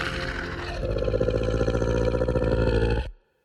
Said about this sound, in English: The two creatures unhinge their jaws the same way Chief Lester did, and you hear that terrible, familiar, rattling, choking shriek.